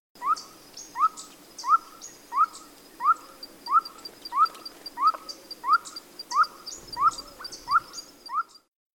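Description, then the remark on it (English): A blue-eyed ground dove, a chestnut bird with dark blue wing spots and dark blue eyes, gives a steady series of about thirteen short, clipped hooting notes at an even, unhurried rhythm, with faint higher chirps from other birds in the background and no talking. “This is what a blue-eyed ground dove sounds like.”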